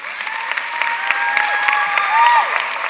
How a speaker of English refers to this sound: You should clap for that.